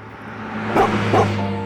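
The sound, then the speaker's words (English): A dog watching from a window barks at a car, two short, fairly loud woofs in quick succession, over a steady low droning hum with no talking. “Car, car, he barks, but they don't see.”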